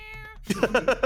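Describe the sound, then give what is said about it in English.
A steady humming tone gives way to a quick run of five short, rhythmic meow-like cries, fairly loud, sounding like a human voice imitating a cat. “For a second there, I thought you were doing cat sounds.”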